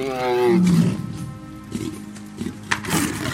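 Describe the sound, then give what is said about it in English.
A deep, loud tiger roar swells up and then trails off into rumbling growls, with a few sharp clicks and thumps toward the end. “The flu turned him into a tiger.”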